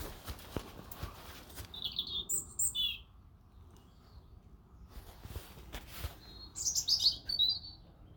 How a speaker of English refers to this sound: Wow, bird song.